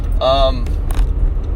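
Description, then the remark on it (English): Car keys jingle in a couple of quick bursts as the engine of a manual-transmission car in neutral whines briefly while restarting at a traffic light, then settles into a low, steady rumble. “I probably didn't need to turn the car off.”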